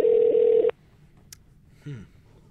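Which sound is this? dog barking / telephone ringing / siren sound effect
telephone ringing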